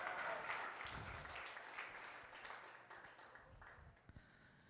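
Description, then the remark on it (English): A church audience applauds steadily, many hands clapping at once in a dense, continuous wash that gradually softens, with a few cheers or shouts mixed in. “I say clap your hands if you're glad to be in the house of the Lord.”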